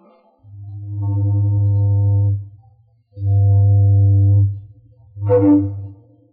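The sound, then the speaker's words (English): An old steamboat whistle, as heard on a radio broadcast in November 1925, sounds three loud, low, reedy toots: two long blasts about two seconds each, then a shorter final one, with brief silences between and no voices. “Now, getting back to that night in November 1925, if you were tuned in, you heard a mighty familiar toot on an old steamboat whistle and a mighty friendly voice talking to you, sort of like this.”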